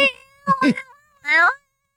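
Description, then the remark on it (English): A human voice mimics a cat, producing three short, whiny meows with gliding pitch, fairly loud, the last one drawn out slightly longer, with silence after. “That's what cats sound like.”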